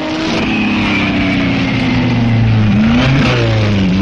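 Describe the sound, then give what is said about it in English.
A sports racing car engine revs loudly and steadily at the Le Mans 24-hour sports car race, its pitch rising and falling in long harmonic sweeps as the car accelerates, continuous with no voices. “This is real motor racing with cars that can be used for family outings.”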